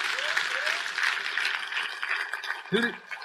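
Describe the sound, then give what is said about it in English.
A crowd claps steadily in dense, continuous applause for a young woman who ran the 3,000 m steeplechase in 10:27 and qualified for the world championships, with a few voices rising briefly above it near the end. “Come on, give her a great big applause.”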